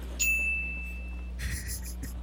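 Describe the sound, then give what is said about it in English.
A single bright bell ding, played to mark a speaker's verbal stumble, rings out clearly and decays over about a second, followed by a brief burst of muffled noise over a steady low hum. “I'll do a little bell every time he fucks up.”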